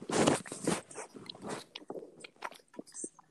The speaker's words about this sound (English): If you hear splashing and tingling, that's me drinking water and having a cough lolly.